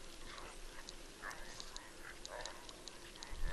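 A small bunch of caribou running, their hooves making a quick, irregular patter of faint, sharp clicks over a low, steady rumble of background noise.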